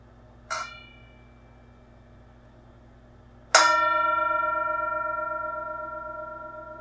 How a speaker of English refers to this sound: Here's the bell. Enjoy.